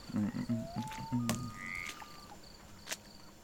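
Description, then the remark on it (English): A frog croaks in a quick run of low, throaty pulses, loud, then trails off into softer croaks while faint high chirps and clicks sound in the background. “It's just a regular frog that could, if it wanted to, possibly try and eat you.”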